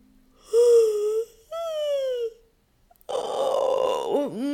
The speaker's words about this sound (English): See if you can find some space between your ribs by reaching up on one side and yawning. And the other side.